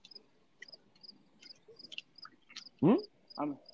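Crickets chirp outside in faint, high, evenly spaced pulses that keep a steady rhythm, with two brief, louder voice-like bursts breaking in near the end.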